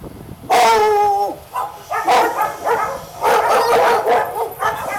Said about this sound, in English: Now you'll hear the dogs actually start barking.